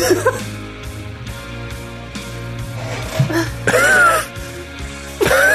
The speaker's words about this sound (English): One hell of a cough.